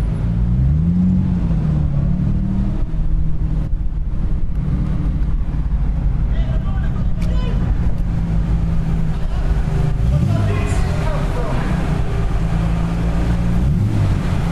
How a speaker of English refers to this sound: So I'm going to play you some of the sounds we've recorded of a trip to Le Mans. First one, the sound of boarding this ferry.